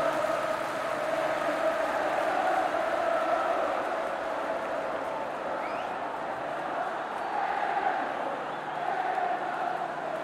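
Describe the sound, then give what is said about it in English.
A large crowd at a race shouts and cheers, chanting the name Adrian, in a steady, dense roar of many voices, sustained throughout at a fairly loud level with no single speaker standing out. “After a few moments, you can hear the crowd just shouting, Adrian!”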